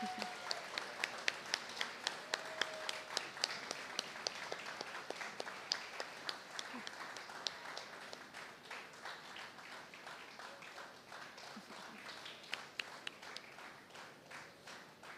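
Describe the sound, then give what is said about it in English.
A crowd applauds the mothers in the audience as they stand, many hands clapping in a dense, bright patter with sharper individual claps standing out, holding fairly even before thinning slightly toward the end. “And as they stand, can we give a round of applause to all our mothers?”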